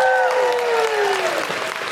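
An audience breaks into sustained applause, a dense wash of clapping that stays loud and steady throughout, with a faint tonal whistle or voice sliding downward early on.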